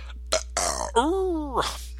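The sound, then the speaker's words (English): A drawn-out burp with a wavering, tonal rumble, preceded by a few short breathy bursts and ending in a brief exhale. “Burps, yawns, no farting, though.”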